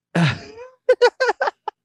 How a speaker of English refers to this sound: Sorry. It was like a sneeze.